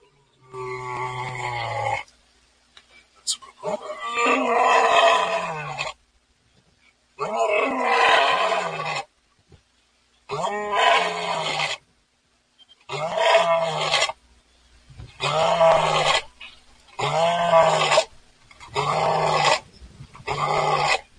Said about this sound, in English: I've heard the lions in the morning at the zoo.